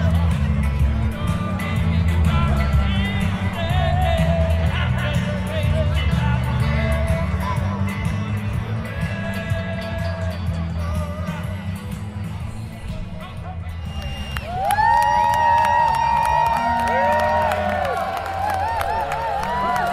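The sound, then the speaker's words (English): A dense crowd at a footy match roars and murmurs steadily for the whole stretch, loud and continuous, with scattered shouts and whoops rising above the din and a burst of higher-pitched cheering near the end. “Here's my day at the footy.”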